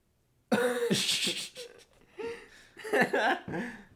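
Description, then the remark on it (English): A loud burp drawn out into several croaking, voiced bursts over about three seconds, rough and throaty with short breaks between them, with no other sounds around it. “That was the worst burp I've ever heard.”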